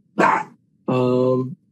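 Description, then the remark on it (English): A dog barks twice, first a short sharp bark, then a longer, drawn-out, more tonal bark, loud and clear with no talking underneath. “This dog is gonna murder me. Will you stop?”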